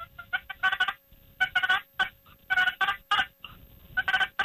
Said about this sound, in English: And then this is a purr, where I just hold the plate on the reed and drag it slowly.